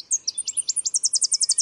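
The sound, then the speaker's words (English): A Tennessee warbler, a tiny yellowish songbird with a white stripe over its eyes, sings a rapid, high-pitched series of sharp chipping notes that speeds into an even trill, clear with no other sounds. “Tennessee Warbler, Nectar Thief”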